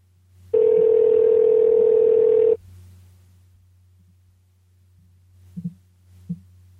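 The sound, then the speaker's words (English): A single loud, steady electronic ring tone sounds for about two seconds as an outgoing phone call to the Adult Swim phone line rings, followed by near silence, a faint line hum and a couple of soft clicks. “Thank you for calling Adult Swim.”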